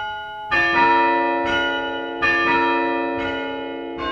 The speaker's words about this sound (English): This is the chime at St. Mark's Episcopal Church in Evanston. It's more than 100 years old, and it's one of only two active chimes in the area. The bells are played from the first floor with a chime stand.